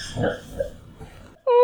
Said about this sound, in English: Our puppy is snoring. Yeah, she's sleep. She looks like a Dalmatian, kind of. She's sleep yipping.